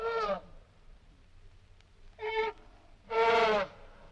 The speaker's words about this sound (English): And today, through sound, he'll introduce us to the animals that we take for granted and the animals that we love, like a lion, for instance. Or an elephant.